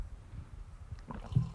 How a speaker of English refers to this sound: Excuse me. I think I just gulped into the microphone.